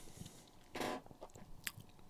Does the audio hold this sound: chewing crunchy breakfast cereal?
yes